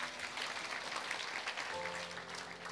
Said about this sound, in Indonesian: Berikan tepuk tangan bagi Tuhan.